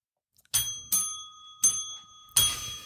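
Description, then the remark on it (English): Bells ring out in four sharp, bright strikes at an uneven pace, each tone lingering and fading before the next. They sound clear, with no talking. “I don't like us all having bells.”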